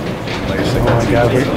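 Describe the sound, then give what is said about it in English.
An old steel service elevator rushes downward at high speed past 1,000 and 2,000 feet, with a steady, loud mechanical rumble and clatter, a rattling roar resembling a moving train that holds level throughout. “And eventually, we climb into this old steel service elevator.”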